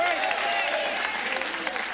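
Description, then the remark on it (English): A crowd answering a preacher's call to scream if thankful for a new year erupts in steady applause mixed with shouting and screaming voices, a loud, dense wash of clapping and cheers that holds throughout without a break. “If you're thankful for a new year, somebody scream by faith.”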